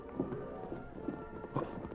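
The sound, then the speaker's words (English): Hoofbeats of approaching horses, ridden by a tall masked man and an Indian, clip-clop in a steady, unhurried rhythm, a hollow knock roughly every half second, moderately loud over a soft background hum. “When he heard the hoofbeats of approaching horses, he leaped to the dust-filmed windows.”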